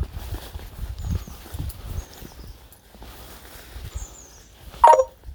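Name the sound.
dog panting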